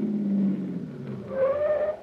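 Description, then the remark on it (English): A taxi cab pulls up and stops at a little white cottage: a low engine rumble eases off, then a brief, high brake squeal rises near the end, with no voices. “Driver, pull up that little white cottage there behind that car that just rolled away.”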